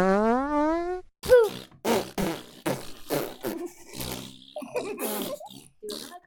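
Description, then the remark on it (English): A voice blows wet, buzzing raspberries imitating farts: one long wobbly buzz at the start, then a rapid string of shorter sputtering bursts, fairly loud. “Pooping, yeah, making fart sounds with your mouth and your poop.”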